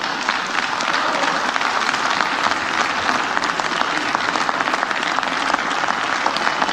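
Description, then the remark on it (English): Sustained applause from a large crowd in the US House of Representatives chamber during nominations for Speaker of the House, a dense, steady patter of many hands clapping at once, loud and unbroken throughout with no voices standing out. “You have to clap for your racist.”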